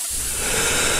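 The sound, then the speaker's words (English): A steady, loud hiss of helium being inhaled, lasting about a second with no voices. “If you inhale it...”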